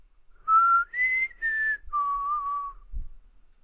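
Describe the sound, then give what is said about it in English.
A person whistles a four-note mockingjay call: a mid note, a higher one, a slightly lower one, then a long low note, clear steady tones followed by a soft thump. “You know the mockingjays? That one. Do that again?”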